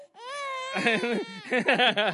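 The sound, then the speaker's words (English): A baby girl, a grandchild, cries loudly while being handed over and comforted, opening with one sustained, high-pitched wail, then breaking into a series of choppy, rhythmic sobbing bursts. “This is our third grandchild, okay?”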